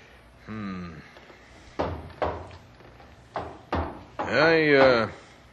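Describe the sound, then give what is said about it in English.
The drawers of an old, worn metal filing cabinet squeal as they slide open, then shut with several sharp thuds, ending in a long, wavering scrape of another drawer being pulled. “Drawers still work? And just barely. I'm afraid that filing cabinet has seen better days.”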